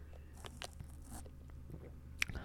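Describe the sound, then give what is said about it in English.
Soft mouth sounds of someone sipping a Starbucks Nitro Cold Brew coffee: soft slurps and wet clicks scattered over a couple of seconds, with one sharper click near the end and no talking. “It is Starbucks Nitro Cold Brew. Let me sip that real quick.”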